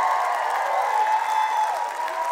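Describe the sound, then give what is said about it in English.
A large crowd at the Michael Fowler Center yells and cheers for a group of people working out the back, in a loud, steady roar that holds for the whole couple of seconds, with individual voices rising out of the wash of noise. “I'd love you to yell for them so loud that they can hear you out the back.”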